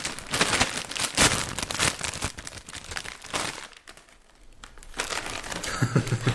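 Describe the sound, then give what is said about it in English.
A packet of ketchup-flavoured crisps is torn open and handled, with bursts of sharp, bright crinkling that start and stop irregularly, briefly easing before loud rustling resumes. “Should we try these ketchup?”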